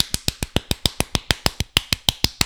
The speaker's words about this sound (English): That was 100 claps a minute, bro. I'm breaking records.